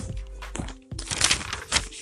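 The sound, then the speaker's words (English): Rustling and crinkling of paper pages of notes, in irregular bursts with a brief pause partway through, fairly loud and with no voices. “These are some of my notes here in my paper.”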